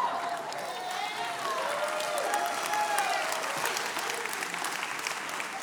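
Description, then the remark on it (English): A crowd applauds steadily for several seconds, a dense, even wash of many hands clapping at once, with a few faint whoops and voices rising through it. “Yeah, you can clap now, but I thought I was gonna die that day.”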